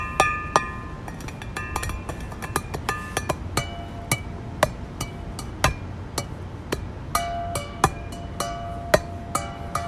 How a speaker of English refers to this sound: Wow, water bottle music.